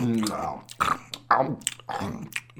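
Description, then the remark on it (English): A wet series of slurping and smacking sounds, several bursts in quick succession with growly voiced tones, like a voice mimicking noisy, juicy slurps, as Unicron's maw closes around the moon it has swallowed. “The moon is sucked completely into Unicron's maw, which closes around it with a snap and a juicy series of slurping noises.”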